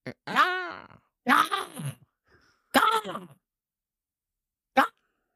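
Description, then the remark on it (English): A person's voice imitates a crow's caw: three loud, harsh, drawn-out squawks with strained, rising-and-falling pitch, followed after a pause by one short clipped burst, alone. “What about that horrible sound they make?”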